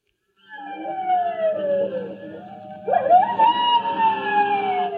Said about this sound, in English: I wish that coyote quit yowling. It's fretting them.